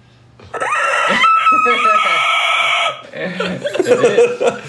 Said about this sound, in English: No, man. The real screech of the eagle is this.